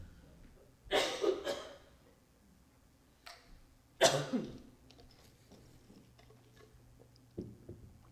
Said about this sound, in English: I felt that cough coming on.